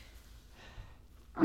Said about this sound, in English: Don't isolate my sneeze, please.